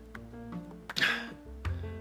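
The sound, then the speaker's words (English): A single sharp, breathy cough from dry air bursts out mid-clip, followed a moment later by a shorter, softer throat noise. Steady low background hum, no talking. “There's the dry air out there, so pardon me if I cough.”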